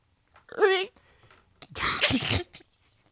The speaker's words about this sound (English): Sorry, I sneezed.